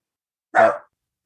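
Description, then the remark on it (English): A single short dog bark, moderately loud, standing alone against silence with no talking around it. “Don't worry about the dog.”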